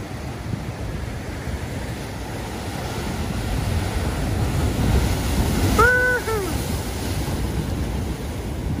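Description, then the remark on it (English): Ocean waves break and wash steadily against the shore in a continuous, rushing roar that swells slightly midway, with a brief whining call rising over the surf near the end. “Not near the ocean, you haven't had this for a while, I thought I would give you a treat here today.”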